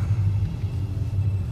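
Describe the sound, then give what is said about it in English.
A car engine's deep, steady rumble, a continuous low drone that holds at an even level throughout, with no voices, as the car pulls away from traffic lights that have turned green. “Right, lights going yellow, green. We're off.”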